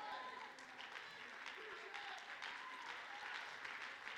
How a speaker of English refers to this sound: Come on, clap your hands like you really mean it. We agree together. We agree together.